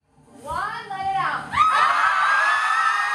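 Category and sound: crowd, group screaming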